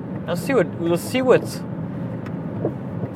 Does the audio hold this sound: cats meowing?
no